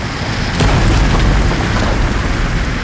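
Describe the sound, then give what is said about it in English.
Sea water roars through the maze of mine tunnels in a loud, continuous, low rumbling rush, with a sharp booming crack early on and a steady churning wash that never lets up. “And then the more terrifying sound as the sea swept through the maze of tunnels.”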